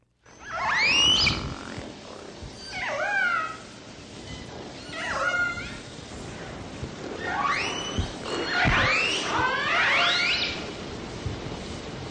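Resident orca pod communication calls, not echolocation: a series of five or six squealing, whistle-like cries that sweep up and down in pitch, spaced a few seconds apart over a steady underwater hiss.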